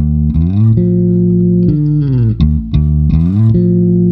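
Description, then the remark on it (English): A loud, deep bass guitar riff of a few sliding, sustained notes, doubled by a thin, slightly effected electric guitar, with no voices. “but it's doubled so nicely by this my riff of choice today, the bass.”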